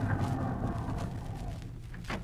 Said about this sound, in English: Say, Jack, look at that beautiful car driving in. Gee, what a car. A chauffeur in uniform and everything. Must be the president of the network.